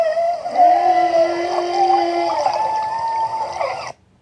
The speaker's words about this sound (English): Now this is a humpback whale sound. Is this a language?